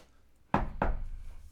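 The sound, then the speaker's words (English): Two quick wooden taps on a door, made by a little guy at the end of a hallway after he looks left and right. The taps are about a third of a second apart, each a dull, fairly loud knock with a short ringing decay, and there are no voices. “looks left, looks right, taps on a door.”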